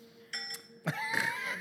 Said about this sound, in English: Yes! Now I get it. Do my bell. Thank you.